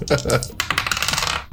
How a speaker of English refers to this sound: Ah, shit. I dropped my dice.